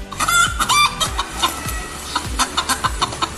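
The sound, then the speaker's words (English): A chicken in pain, as identified by AI, clucks in a rapid, strained series of sharp calls, about a dozen bursts in quick succession, fairly loud with no one talking. “That's a chicken in pain.”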